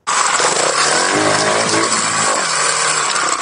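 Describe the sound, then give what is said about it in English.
A two-stroke motorbike engine in Maple Ridge runs loudly and steadily, its raspy, buzzing drone rising and dipping slightly in pitch over a few seconds, with no voices. “I really like the sound of the first bike in the morning. You know, just that one bike echoing through the parking lot, just putt, putt, putt.”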